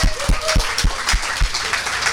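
A crowd claps in a steady wash of noise, with a few heavy, evenly spaced thumps cutting through roughly three times a second. No one speaks.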